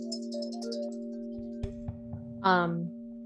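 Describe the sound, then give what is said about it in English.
Wind chimes ring with steady, overlapping tones that hold throughout, topped by brighter high chirps early on, a few soft knocks, and a louder harmonic burst near the end. “It's funny, I'm like playing around with like end songs, wind chimes.”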